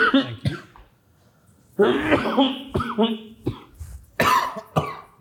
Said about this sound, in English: It's the coughing episode, man. We're just coughing out and about today.